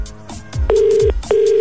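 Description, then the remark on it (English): Ringback tone of an outgoing phone call: two steady, buzzy electronic rings, each about half a second long with a short pause between, clear and fairly loud over faint line noise. “All right, this person, if your phone's ringing, answer with, what do you mean?”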